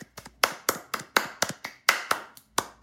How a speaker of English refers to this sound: Polite applause.